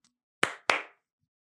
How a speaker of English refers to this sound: And all right, couple claps.